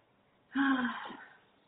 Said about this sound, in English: God bless you, baby possum.